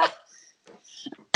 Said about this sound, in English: I have a little cough and I swear I don't have the Rona, but I feel like I have allergies. And yeah, they're really bad right now.